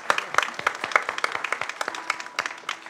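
A small group claps for a few seconds, the uneven, overlapping hand claps forming a light, scattered round of applause with no voices over it.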